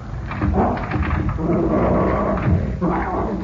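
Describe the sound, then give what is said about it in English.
A dog, Fred Harlan's dog, growls low and menacingly, a steady rumbling snarl that holds for about three seconds with a brief dip before rising again. “Seems to be no one here but the dog.”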